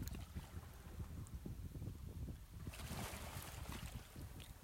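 Ocean waves wash in continuously, with a low rumbling churn and a brighter hiss of surf swelling partway through, mixed with some wind noise and no voices.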